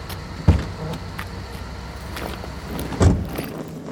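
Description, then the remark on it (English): A steady low engine rumble runs throughout, broken by two dull thumps about two and a half seconds apart, as a man accepting a lift climbs into a car and shuts the door. “Hey, you need a lift? Yeah, car trouble. You headed into town? As a matter of fact, I am. Hop on in.”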